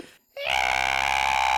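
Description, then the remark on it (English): After a brief hush, a creature lets out a loud, sustained high-pitched scream with a harsh, buzzing edge, holding steady without a break until the end. “They just scream even louder.”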